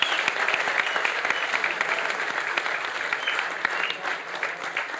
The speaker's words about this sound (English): That's probably worth a round of applause, too.